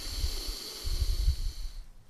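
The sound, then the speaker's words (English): A slow, audible breath drawn in through the nose during a breathing exercise, filling the belly, then the chest; fairly quiet, with a soft airy hiss and rumbling low-end texture lasting about two seconds, no talking. “Deep inhale through your nose, filling your belly, then your chest.”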